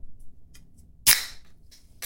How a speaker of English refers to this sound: That is the opening of a PBR can and being poured into